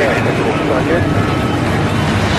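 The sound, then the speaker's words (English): A loud, steady engine roar fills the moment, a dense mechanical drone that holds at an even level throughout, as racing car engines are started and revved. “Start your engine! Fired up when you're ready. Go ahead, light it off.”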